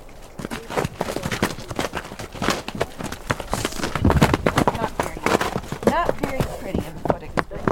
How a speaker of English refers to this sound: There's a dark brown horse racing around Stefanie Skidmore in her round pen. He's afraid, and when wild horses are afraid, their instinct is to run.